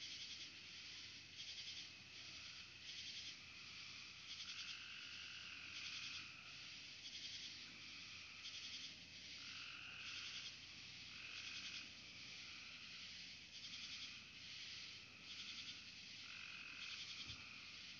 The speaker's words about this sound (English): The sounds of the wood. gracious sound, happy sound. A frog.